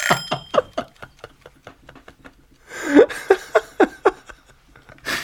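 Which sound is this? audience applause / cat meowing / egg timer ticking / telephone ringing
egg timer ticking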